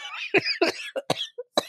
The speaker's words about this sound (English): gets so upset she goes into a coughing fit.